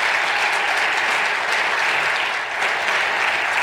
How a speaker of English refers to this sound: Let's please give her a round of applause for helping put this meeting together.